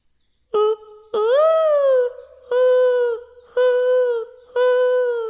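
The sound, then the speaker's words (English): A male dove's mating call to females: loud, resonant cooing, one brief note, then a long swelling coo and three steady, evenly spaced coos, with no other sounds around it. “That dove put the bird back in the birds and the bees.”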